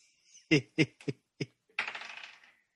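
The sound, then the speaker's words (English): Dice clatter onto a hard table, rolled for initiative: four sharp, separate clacks, then a brief rattling tumble as they roll and settle. The sound is fairly loud, with no talking. “Roll for initiative.”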